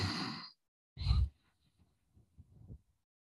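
Two loud, breathy exhales blown into the camera part of a microphone, each a rough rush of air lasting about half a second, followed by quieter, faint rustling breaths.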